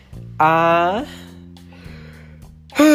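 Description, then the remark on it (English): A loud, voiced yawn stretches out for about half a second with a sliding pitch, followed by a quiet pause over a steady low hum before another vocal sound starts at the end. “Sorry, yawn.”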